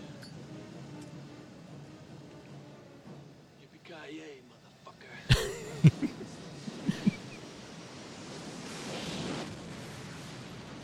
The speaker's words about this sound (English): We're just going to listen to an explosion. So that's the end of Die Hard 2 where the plane's taking off, but it has a fuel leak. So he just lights the fuel on the runway and it like follows it all the way up as it's going up in the air and then boom